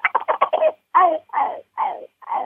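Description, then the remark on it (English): Imitated young male turkey (jake) yelps, voiced by a turkey hunter calling to a gobbler, loud: a quick flurry of short choppy notes, then four slower, raspy yelps that each drop in pitch, with no talking. “Then I'll go in on him doing Jake gobbles, and Jake yelps like this.”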